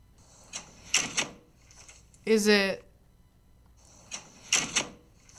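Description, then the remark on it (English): A house's side door rattles open with a clunk, its hinge gives a short high squeal, and it bangs shut again a few seconds later, loud with no talking. “Oh my god, it's literally my side door.”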